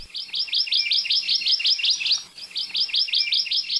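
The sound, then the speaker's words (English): A Hawaii amakihi honeycreeper gives a fast, steady trill of high, buzzy chirps, breaking off briefly midway before resuming at the same brisk rhythm, loud and alone without any talking. “And in stories, their calls were often seen as the scolding voice of reason.”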